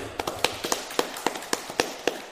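A small group claps in scattered, irregular bursts, a dozen or so sharp claps over a couple of seconds. The claps are moderately loud and there is no talking.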